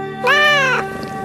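A single drawn-out cat meow, about half a second long, rising slightly and then falling off, heard over a faint steady background hum.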